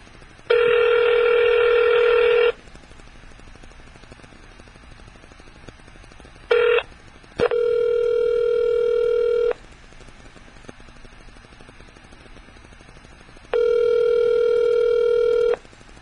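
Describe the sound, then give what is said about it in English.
A telephone line tone sounds in steady, buzzy electronic bursts about two seconds long, separated by pauses, loud and clear with no talking, while a call is placed to get someone back on the line. “We'll see if we can get him back on the line.”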